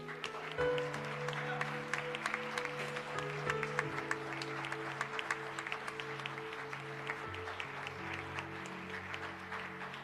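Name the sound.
audience clapping hands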